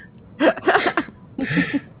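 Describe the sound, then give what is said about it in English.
A loud, breathy sneeze in two bursts, caused by too much pepper on a hoagie eaten for lunch: a longer, sputtering first blast followed by a shorter second one after a brief pause, with no talking over it. “Easy sneezing now.”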